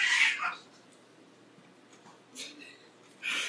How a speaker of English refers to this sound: Wow, I hope you all heard that. That's the activity in the Thunderdome, the Cat Thunderdome.